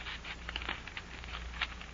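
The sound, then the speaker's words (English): An envelope holding a note being torn open: a quiet run of crisp, papery rips and crinkles in short uneven bursts over a low steady hum, with no voices. “Aren't you going to open it?”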